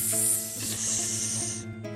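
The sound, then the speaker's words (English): A person mimics snakes with a loud, sustained hiss, a buzzing voiced rattle running underneath. It lasts over a second and a half, then cuts off with a brief extra hiss. “I go at a slightly different frequency, and I summon snakes to show up, and so they go...”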